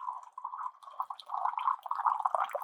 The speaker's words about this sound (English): So let the water cool off a little bit. Not boiling, 3 or 4 minutes is good. 5 or 6 isn't too long. And then go ahead, pour some tea.